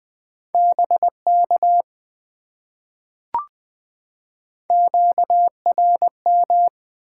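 A clear, steady Morse code tone keys out quick dots and dashes at 20 words per minute in two bursts, separated by a few seconds of silence broken by a single short click.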